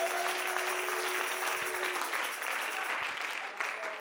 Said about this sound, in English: Come on, everybody, clap your hands to the Lord.